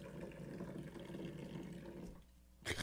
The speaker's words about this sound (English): He was just pouring his coffee from a mile in the air. That was impressive. See all that foam?